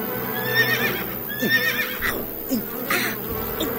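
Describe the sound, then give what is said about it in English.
A horse whinnies twice in shrill, wavering bursts while hooves clop unevenly, with a steady insect-like buzzing humming underneath. “Hold that horse down.”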